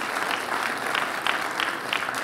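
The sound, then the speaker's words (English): The Parkway church audience applauds steadily, giving the Lord a round of applause, a dense wash of clapping with scattered sharper claps popping out at a fairly even pace, sustained and fairly loud throughout. “If you believe it, give the Lord a big round of applause.”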